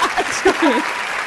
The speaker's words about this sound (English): just lets the claps go for the rest of the episode?